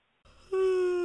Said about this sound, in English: Wow, yawning. Wait, we should leave that in. I'm yawning.